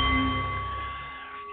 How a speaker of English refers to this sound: The Nepalese meditation bowl is chiming, centering your mind and delight on The Art of the CEO